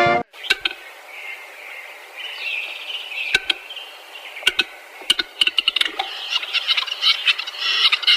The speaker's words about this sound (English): And this is the actual bird!